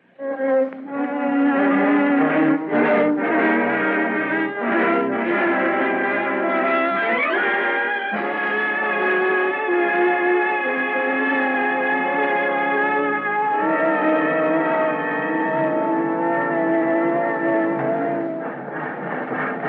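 A loud, sustained train whistle blares with a rich chord of tones for nearly twenty seconds, shifting pitch now and then over a steady mechanical rumble of a moving train.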